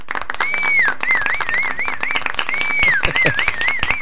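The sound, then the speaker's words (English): A steady round of applause, dense and loud throughout, with a high warbling whistle that swoops up and down, starting twice over the clapping. “We haven't done a round of applause or this is phenomenal.”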